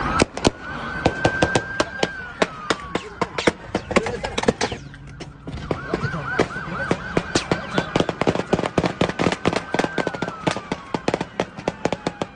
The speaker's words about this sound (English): Shots fired. Yes, shots are fired. Shots have been fired.